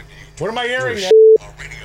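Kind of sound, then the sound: signal or alarm, phone ringing tone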